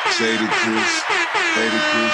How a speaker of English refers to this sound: But yo, man, hit the air horns, man. Don't stop.